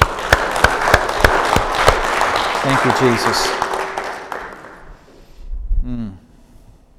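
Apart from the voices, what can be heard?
audience clapping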